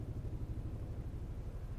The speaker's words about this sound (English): Helicopter.